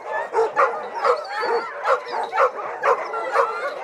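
A pack of excited sled dogs bark and yip in a dense, overlapping chorus, rapid bursts repeating about every half second, loud, with whimpering mixed in and no talking, as they are hooked up to an ATV for exercise instead of a sled.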